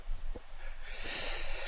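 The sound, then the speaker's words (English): A drawn-out yawn: a low, breathy start swelling into a long, airy exhale that holds steady to the end, with no words spoken. “Well, I get a yawn coming up.”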